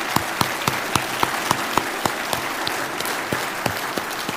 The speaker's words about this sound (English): So let's give everybody a round of applause.